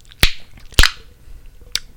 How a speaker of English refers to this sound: You gotta put the bottom of your tongue on the roof of your mouth, make the suction, and then slap that shit down. That shit slaps.